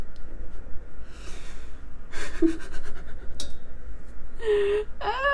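A hungry person's stomach growling in a few irregular bursts: low gurgling rumbles broken by short squeaky, whining tones toward the end, with no one talking over it.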